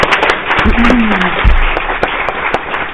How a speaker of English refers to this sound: I actually watched her video on the Girl Up website, and it was terrific, so I think we should all give her a round of applause.